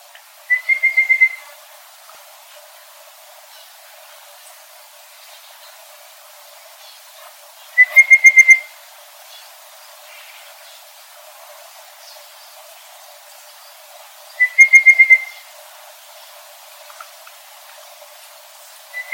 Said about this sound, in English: two birds calling in trees along a creek bank in Yarrandon, which is in northwest of Cooktown in Queensland, on the country of the Lama Lama people.